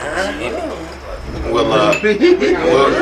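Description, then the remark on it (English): Glass bottles clink together several times in a quick, bright cluster as people tap their bottles in a toast, while people talk and murmur over it in the background. “You ain't got to hit it, but I would love for us to get a little tap with these bottles. Cheers to y'all.”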